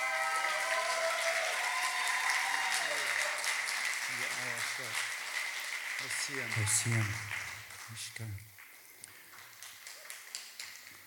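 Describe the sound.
A large audience applauds loudly and steadily, dense clapping filling the space, with some voices and a few cheers mixed in before the applause tapers off near the end.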